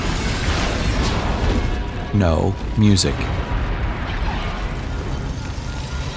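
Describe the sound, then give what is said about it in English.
A continuous roar of destruction as an entire city is laid to waste, with two loud, booming crashes of giant crystal structures shattering and crushing people in quick succession, while a man speaks briefly over the din. “People are crushed by giant crystal structures. An entire city is being laid to waste.”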